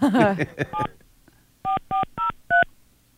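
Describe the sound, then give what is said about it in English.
A voice speaks briefly, then four evenly spaced touch-tone dialing beeps follow as a phone call is placed back to a credit card company, each a short, steady, fairly loud dual-pitched tone separated by brief pauses. “So I thought it'd be fun to call them back and she's going to throw me under the bus here.”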